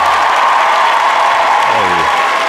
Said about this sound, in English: Alex Singleton. Round of applause. Round of applause, woo-hoo, baby.